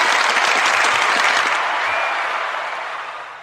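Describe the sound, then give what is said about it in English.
A crowd claps and cheers as Fred Dogs is introduced, a dense, steady roar of applause that holds strong for a few seconds, then gradually tapers off toward the end. “Fred Dogs is in the middle. Make some noise.”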